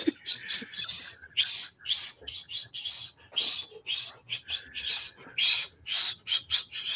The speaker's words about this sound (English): Hold on, cuz, you can't whistle? This is no. I can't whistle like that. Consistently. Oh, okay. You sound like a teapot.